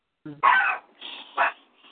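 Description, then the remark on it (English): A dog in the background lets out a short yelping bark, followed by thin, high-pitched whining and another brief yelp, heard fairly clearly over a quiet background. “I hear dog. Dog, I think, like in the background.”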